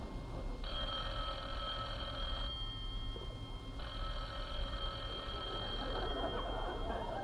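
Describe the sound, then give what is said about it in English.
A telephone bell rings in two long bursts, roughly two seconds each with a pause between, clear over a low background hum, at Jack Benny's house in Beverly Hills. No one speaks. “Rochester, the phone.”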